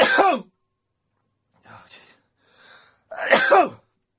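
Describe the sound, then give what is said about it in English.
Two loud sneezes burst out about three seconds apart, each sharply voiced, with quieter breathy inhales and rustling between them. “I've got to sneeze.”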